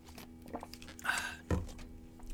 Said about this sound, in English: Sorry, let me get a sip here.